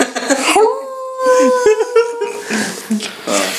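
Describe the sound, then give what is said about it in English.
A person imitates a wolf howl, holding one steady, drawn-out vocal tone for almost two seconds, with chatter and light laughter around it. “Does that sound like a dog? I'm trying to do a wolf.”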